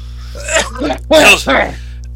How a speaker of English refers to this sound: El Matador, the coughing has begun. Oh, Matador is here? No, but he loves my coughing.